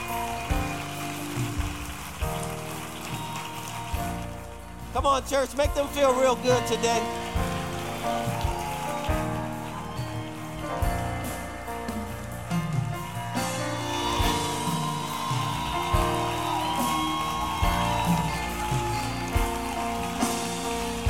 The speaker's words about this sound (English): Step into the nearest aisleway. Come meet me right down here at the front. Linked Up Church, give them a big round of applause as they come. Come on down now in Jesus' name.